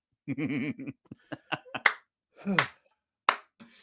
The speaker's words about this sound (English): That's a full-on, firmly planting my palms next to each other, cupping the palms to make a nice, loud noise clap. That is a slow clap if I've ever heard it.